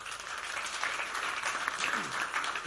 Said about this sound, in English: Mostly, men run away and women stay. Clap for women.